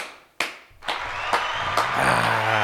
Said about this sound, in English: Of Michigan. Wolverines and Wolves. They won the national championship. Yeah. You can give them a round of applause if you like.